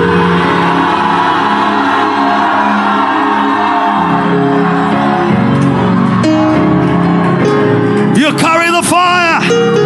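A loud, continuous roar of a worship audience shouting "fire" and hollering together after a countdown, dancing, jumping and rejoicing, dense and unbroken throughout, with rising and falling whoops and yells bursting out over the din near the end.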